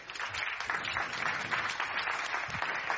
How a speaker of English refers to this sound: Please give a huge round of applause to Peng, Helene, and Chris.